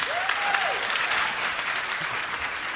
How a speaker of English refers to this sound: People here who've been online dating, can you applaud women, especially if you've been dating online? When Manoush tells stories about these kinds of experiences and messages, will you clap if they ring a bell?